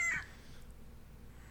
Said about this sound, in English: Oops, I did the rooster.